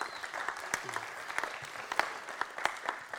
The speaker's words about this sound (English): So come on, let's give Sam a round of applause.